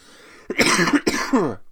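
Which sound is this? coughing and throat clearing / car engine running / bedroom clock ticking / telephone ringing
coughing and throat clearing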